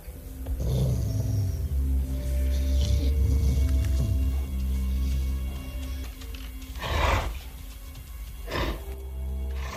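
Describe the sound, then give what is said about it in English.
Starving dogs growl low and steadily throughout, fairly loud, with a few harsher snarling bursts breaking through near the start and toward the end. No one speaks. “Okay, with his own dogs. They're loyal beasts. They were. Now they're starving.”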